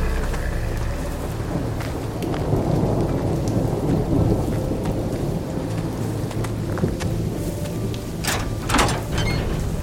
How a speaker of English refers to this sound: The storm has knocked out all our power.